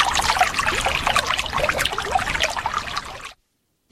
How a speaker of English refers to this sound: The river flows quietly through communities, providing sustenance for households, backyard farms and livestock. For several generations and years, the Volta River has been a salvation and the go-to water source.